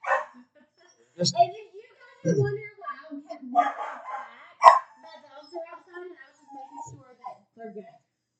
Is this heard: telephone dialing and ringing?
no